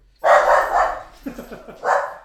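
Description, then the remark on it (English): A dog, Bosley, barks loud, letting out three drawn-out, excited barks in quick succession with short pauses between them. “No, just a crazed dog.”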